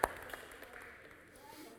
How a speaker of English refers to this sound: So like we do every possible week, can we give a round of applause to everyone who serves here on a team here at Mountainside Church? Makes today happen.